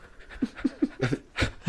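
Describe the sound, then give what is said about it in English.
A voice imitates heavy breathing: a quick run of six or seven rhythmic, raspy panting huffs, growing stronger toward the end. “You hear him like breathing all heavy.”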